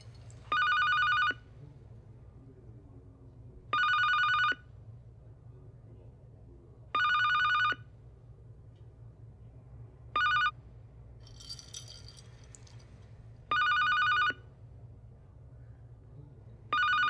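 A telephone at a dating call service rings over and over, going unanswered by Shao Kahn: six evenly spaced electronic trills about three seconds apart above a steady low hum, with a brief hiss between rings.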